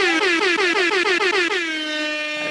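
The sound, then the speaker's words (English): A loud, brassy air horn blares in a rapid series of stuttering pulses for over a second, then settles into one steady sustained blast that fades slightly at the end. “105 air horns.”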